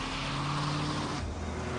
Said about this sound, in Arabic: لما خرج كان يحمل كيسا صغيرا سلمه إلى السائق ثم انصرف. تحركت السيارة.